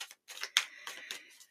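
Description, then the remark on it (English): Playing cards being shuffled for a card reading: a series of crisp, papery riffling bursts with a sharp snap in the middle, uneven in rhythm and fairly loud, with no talking. “Just shuffling like a crazy person, wanting to make sure really that we've got a really good mix up, very conscious of the repeating cards in the last couple of days”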